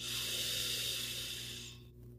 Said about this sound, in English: 3 deep breaths in, birthday candle blow out.